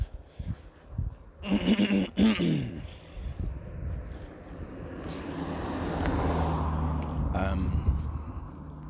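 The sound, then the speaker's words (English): A car approaches and passes along a street during an evening walk at about 9:50 on a Thursday night, its broad engine and tyre rumble swelling over several seconds before easing off. A brief harsh, bleat-like burst sounds earlier. “Sorry, there's an inconsiderate car coming, so you'll have to kind of bear with me a little bit.”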